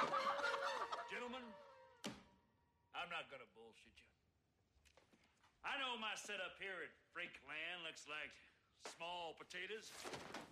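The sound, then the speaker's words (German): A stuffed animatronic chicken clucks in a string of short, rhythmic bursts, loud, after a sharp bang near the start and a brief quiet gap. “Zu den zwei ausgestopften Animatronik-Hühnern. Ah ne, das ist nur eins.”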